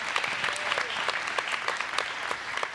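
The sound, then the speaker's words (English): A crowd applauds steadily, clapping their hands unto God, many hands clapping in a dense, continuous patter of sharp, bright claps with no voices standing out. “If you're a woman like that today or a man, go ahead and give those hands a clap unto God.”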